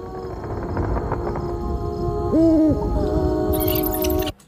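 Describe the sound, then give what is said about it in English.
A single smooth owl hoot rises and falls briefly in the middle, clear, over a steady droning background of hum and ambient noise. No one speaks. “And then that owl in the last frame totally is like a Disney Silly Symphony owl reference.”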